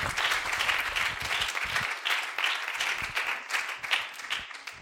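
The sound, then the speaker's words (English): A church audience clapping together as they are seated after a prayer, in sustained, dense applause, a steady wash of overlapping hand claps with no voices standing out, holding fairly loud for the whole stretch. “Clap your hands as you're seated.”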